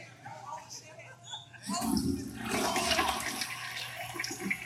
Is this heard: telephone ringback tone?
no